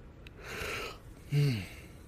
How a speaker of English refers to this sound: That yawn came out of nowhere. I was getting ready to say something. I was like, ah.